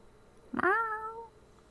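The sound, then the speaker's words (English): A single drawn-out meow from a voice imitating a cat, rising sharply and then sliding down in pitch over about half a second, fairly loud against a quiet background. “Meow. Don't you talk. Are you not a talking cat?”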